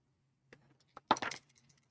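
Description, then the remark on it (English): Dice rolled for a notice check clatter across a hard surface: a couple of isolated taps, then a quick burst of rattling clicks that settles. Moderately loud, with no voices. “Did you roll both dice?”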